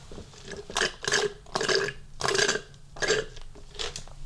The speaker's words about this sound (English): before I even do that, I'm going to take another sip of this coffee.